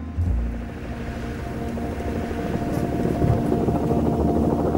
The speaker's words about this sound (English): Outside, the guards have spotted a helicopter.